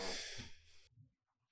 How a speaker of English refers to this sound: Sorry, I got a cough.